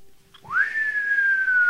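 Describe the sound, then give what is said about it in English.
A cowboy whistles: a single sustained whistle rises quickly in pitch, then holds and slowly falls, loud, heard alone with no talking. “The cowboy whistled.”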